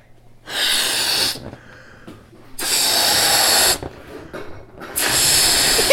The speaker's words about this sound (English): These are two... balloons. Two balloons, and I'm going to blow one of them up. This is going to make the bass drum, the kick drum.